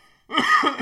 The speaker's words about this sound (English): Cough too. Dude, I am dying right now. I just inhaled like the back of my own throat. Oh my god.